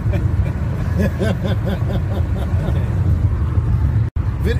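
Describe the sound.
A steady, loud low rumble of a car driving by the water, heard from inside the vehicle, with muffled voices over the road noise and a brief dropout near the end.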